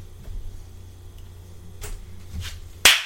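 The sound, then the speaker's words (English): A single loud, sharp hand clap done as a joke, cracking like a slap and ringing out briefly near the end, after a few seconds of quiet background noise and faint rustles. “Why did you clap?”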